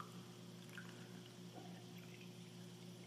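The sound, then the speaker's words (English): More water pours steadily for about three seconds into a cup that already holds a few ounces of water, a soft, continuous, quiet trickling wash over a low background hum with no one talking. “So that means that I have a lot of space to put more water in. I'm going to do so right now.”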